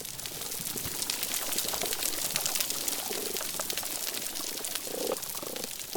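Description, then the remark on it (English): Dense, continuous crackling like frying fat, countless tiny snaps of snapping shrimp on a coral reef, with occasional low grunting and croaking calls of fish rising underneath. No voices. “When you put all the snapping shrimp together, you get that crackling sound.”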